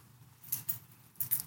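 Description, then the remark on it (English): Keys jangle in two quick, bright bursts, a shaky metallic jingle, separated by a short pause, over a faint low background hum. “You give them your keys, and you trust them to get you home safely.”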